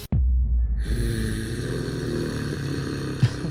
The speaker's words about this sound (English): Hold on, let's I can't listen. Do those growls. Let's listen again.